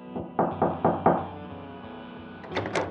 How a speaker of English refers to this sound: but one day they knocked on her door.